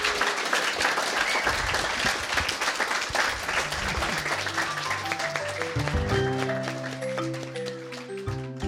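An audience at a Lighthouse event gives four people one more round of applause, steady, dense, continuous clapping, and after a few seconds soft sustained music tones rise underneath as the applause carries on.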